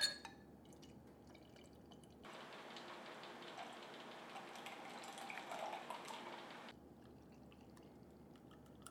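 Beer pours steadily into a glass for about four seconds, a continuous fizzy splashing that starts and stops abruptly, with quiet background noise before and after and no talking.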